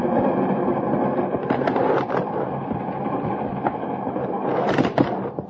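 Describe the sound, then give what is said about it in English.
A moving passenger train roars with a steady, dense rumble, broken by sharp metallic clanks and rattles of the carriages and a brief hissing squeal near the end. “Man could get killed between the coaches.”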